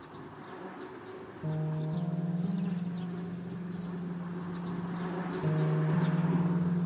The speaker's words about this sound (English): So, they say bees are messengers from the other world, so I'll just leave you a couple of seconds with the bees and I'll be off.